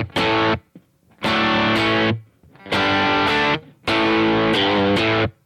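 Loud distorted electric guitar played dry through an amp with all effects turned off: four thick, fuzzy chord bursts, each held about a second, separated by short clean silences with no echo or reverb tail.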